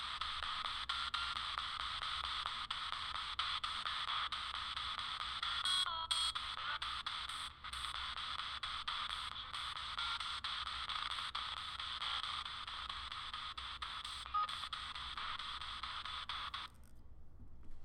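Steady, hissing radio static from a scanning spirit box, broken by brief dropouts and flickers as it sweeps through stations, with no voices, until it cuts off abruptly near the end.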